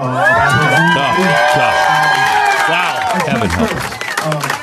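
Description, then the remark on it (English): A loud crowd cheers and claps, with many overlapping voices shouting and whooping over dense, steady applause that holds strong for several seconds. “This is how liberty dies. With thunderous applause.”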